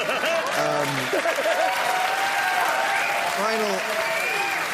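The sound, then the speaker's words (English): Steady, dense applause from an audience fills the whole stretch, loud and unbroken, with brief bursts of a speaking voice rising over the clapping twice. “Don't applaud. I know how you feel about this.”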